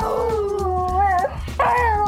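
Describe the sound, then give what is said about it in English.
A beagle howls loudly: one long, wavering bay that bends in pitch, breaks off briefly, then rises into a second sustained howl. No one speaks. “I think a beagle in the White House could be a little tough because they are a very vocal, active dog.”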